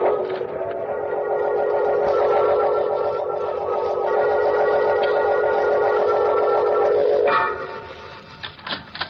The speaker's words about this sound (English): I tell you, it's nothing. It's just the wind. Nobody was there.